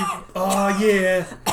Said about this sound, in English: Keep that cough going.